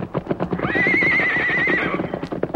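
A powerful white horse ridden by an Indian lets out a long, loud, quavering whinny, while rapid hooves clip-clop underneath throughout, with no voices present.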